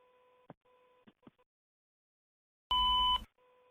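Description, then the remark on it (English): A cell phone call breaking up as the caller goes out of cell phone range, with steady electronic tones cut by sharp clicks and gaps, then a loud burst of harsh distorted noise before the thin tone resumes. “I don't know what happened there. I think I got out of cell phone range.”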